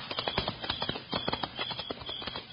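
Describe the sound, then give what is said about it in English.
Horse hooves clip-clop in a steady, brisk rhythm of sharp knocks, fairly loud, with no voices over them. “Come on, horse.”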